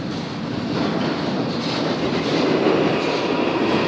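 A train rolls along the rails with a dense, steady rumble and faint clattering, growing slightly louder as it moves off. No voices are heard.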